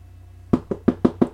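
Five firm knocks on a wooden door in a quick, even rhythm, fairly loud, with a faint low hum underneath and no voices.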